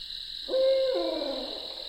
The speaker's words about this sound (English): Venturing deeper into the swamp, I come very close to a barred owl.